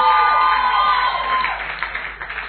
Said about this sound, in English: We started an assignment on Friday at the all night. Oh, those who were here, can you give a clap unto the Lord?